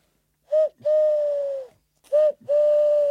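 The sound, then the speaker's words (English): A man's voice imitates an owl, giving two hoots in a row, each a short note followed by a long, steady drawn-out one, clear with nothing else around it. “I can do an owl noise.”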